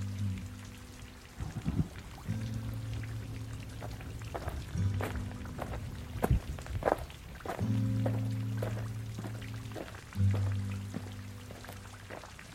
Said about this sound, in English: It suddenly acquires this redemptive role. It suddenly seems like a great thing, like a beautiful thing, the rain.